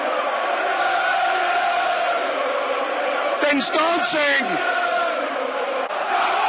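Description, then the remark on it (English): A dense, steady roar of a stadium crowd of about 12,000 to 13,000 at a Millwall versus Norwich football match, after a goal making it 2-0, runs loud and unbroken throughout, with a short spoken phrase cutting through the din partway in. “You can hear what's done at the stadium.”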